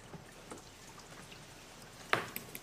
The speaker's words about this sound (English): Bit of a grim demeanor, because it's raining and it's cold and I want to get into the city to get some warmth into myself.